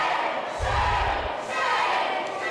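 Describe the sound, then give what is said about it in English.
Protesters shout and yell together at lawmakers in North Carolina after a vote overriding the governor's veto to force through an abortion ban, a loud, continuous roar with a brief low thud partway through and no clear individual words. “Protesters shouting at lawmakers, some of them had to be removed after this vote came down.”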